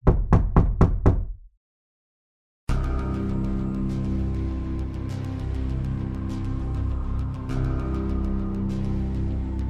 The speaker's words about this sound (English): So it's about 8:30 p.m. right now. And then all of a sudden, there's a pounding at the door.